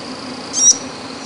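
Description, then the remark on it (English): A purple frog gives a single short, high-pitched squeak, a thin rising chirp lasting a fraction of a second against a steady background hiss. “That small, solitary, weak little squeak. That was so lame. Compared to the wonderful golden frog call.”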